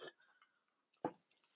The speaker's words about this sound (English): Such a loud sip I took there. Oh, it's a tasty sip, I hope. I definitely went a little strong on that one, but good.